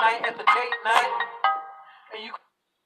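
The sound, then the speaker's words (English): A melodic phone ringtone from an incoming call plays fairly loud: a few quick tuneful phrases, a longer held note, then a final wavering chime before it cuts off abruptly. “Calling my phone, bitch. Why you calling my phone?”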